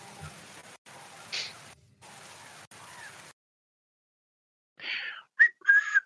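human body sound, person whistling a tune

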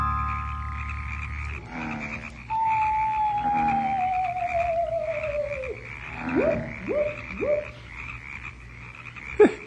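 animal, frogs croaking at night

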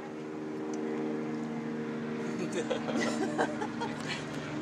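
vehicle, police helicopter flying overhead

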